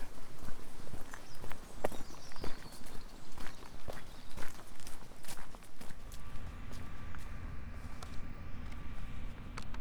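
A pair of donkeys' hooves clip-clop in an irregular patter of sharp knocks at the bottom of a valley covered in mine workings, on the way to Cape Cornwall. A steady wind or low outdoor rumble grows louder in the second half.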